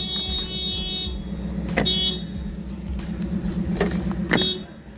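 A car engine rumbles close by with a steady, low hum, broken by a couple of brief sharp rattles as the vehicle moves past, almost hitting another car. No one speaks.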